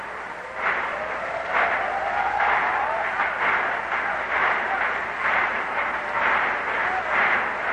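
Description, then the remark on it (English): Kids bang bats on the metal stands at D.C. Stadium during a baseball game, in a loose, repeated rhythm, about one clang per second, over a steady roar of crowd noise. “You hear the kids banging those bats on the metal stands here in D.C. Stadium.”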